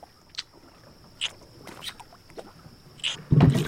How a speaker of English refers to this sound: Okay, something definitely just bumped the boat. Stupid cock-blocking fish.